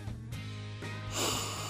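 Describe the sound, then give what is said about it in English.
Someone sniffs a homemade Tonka Bean-scented candle, with two quick nasal sniffs followed by a longer, deeper inhale, over a faint steady hum and no talking. “Ooh, can I sniff it?”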